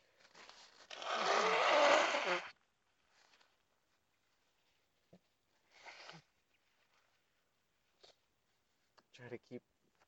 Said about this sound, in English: All right. I'm gonna have to blow my nose, and I'm doing it during the show, because fuck it. I don't edit, and.